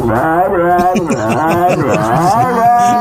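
An excited female dog lets out a continuous, warbling, groaning howl that sounds like Chewbacca, rising and falling in pitch for about three seconds, loud, with no other sounds around it.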